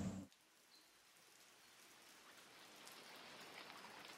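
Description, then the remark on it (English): Steady rain falls outdoors at Monticello in January under cloudy skies, a continuous hiss of drops that holds at an even level throughout, with a brief louder rustle at the very start and no voices. “Clouds are overhead, it's raining quite a bit, maybe snowing a little bit here and there.”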